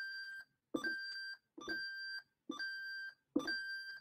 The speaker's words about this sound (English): Love that shit. I love that bell. I'm surprised it still works. I thought it wasn't working for a little bit when I had it hanging here the other day.